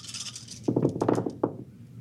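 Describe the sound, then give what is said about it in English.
A quick burst of hard clicking and rattling as dice, including two challenge dice, are rolled for an opposed stealth check and tumble across a surface, a dense clatter lasting under a second, then one last sharp click before it settles. “So I'm going to need you to roll an opposed stealth check.”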